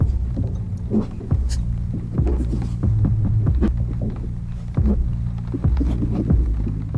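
A deep, throbbing bass line resembling a heartbeat pulses steadily in a film scene as the camera descends a dim, red-lit hallway, with low humming drones underneath and soft thuds recurring at a regular, slow rhythm throughout.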